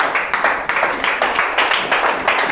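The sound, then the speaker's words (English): A crowd of people claps for Jesus together in a steady, dense burst of applause, the many hands blending into a bright, continuous patter with slight rhythmic swells and no voices. “Can we clap for Jesus?”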